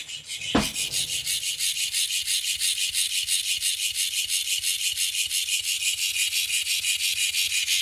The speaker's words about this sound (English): You put the cat toy on, it's great because it flips about and it's something for them to chase. But the noise it makes, I'm going to get it.